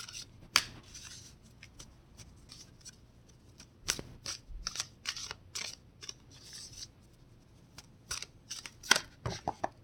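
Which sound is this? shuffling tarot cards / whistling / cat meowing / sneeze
shuffling tarot cards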